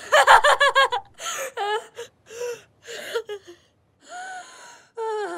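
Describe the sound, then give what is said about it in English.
A boy gasps and breathes heavily in ecstasy: a quick run of sharp, voiced gasps, then drawn-out moaning breaths in uneven bursts, fairly loud, with no words spoken. “It is his breathing and body motions are that of joy and pleasure.”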